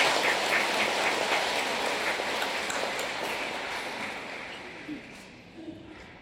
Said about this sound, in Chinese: 好，再一次掌声，祝贺他们好运。